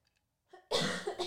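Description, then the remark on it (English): Faint, soft sounds like a quiet sip of a drink come first, followed by one loud, harsh cough. No one speaks. “A cough and a sip.”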